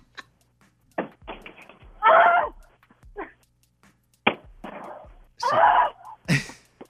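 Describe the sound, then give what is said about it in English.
Someone beating on the backside of a knocked-over television set: irregular, hard thumps and cracks, with two louder, longer crunching bursts of impact partway through, and no talking. “She knocked it over immediately, then just started beating on the backside of it.”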